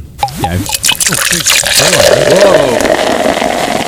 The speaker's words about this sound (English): That's the first beer that I poured.